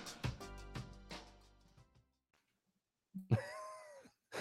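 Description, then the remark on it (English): A short jingle of chords fades into silence, then a man lets out a loud, drawn-out vocal yawn that rises and falls in pitch. “Don't get him with the yawn”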